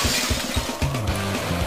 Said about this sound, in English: Was that actually going into the window, like I was saying? Mm-hmm. Busting through the window in the hangar? Yeah. Very first level.